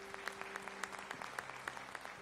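An audience applauds with a steady, dense patter of many hands, a few sharper individual claps standing out, while a low sustained tone hums underneath.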